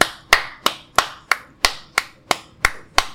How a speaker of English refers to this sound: Let's clap it up